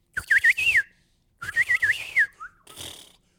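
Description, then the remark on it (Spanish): A person whistles a warbling imitation of a male bird's song, sung once its nest is built, in two quick trilling phrases, high and looping, separated by a short pause, followed by a softer breathy tail. “Y cuando tiene el nido hecho, el pajarito empieza.”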